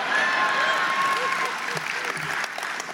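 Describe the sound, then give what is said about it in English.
An audience applauds in a dense, steady wash of clapping that holds for about three seconds. A faint whistle rises over the start, and murmured voices blend into the noise. “And in the end, I read something about the way the fuckers drive down here, and everyone applauds together.”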